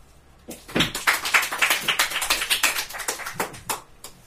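A round of applause from a small audience after a singing performance, dense overlapping claps starting after a short pause and continuing steadily for several seconds at moderate loudness.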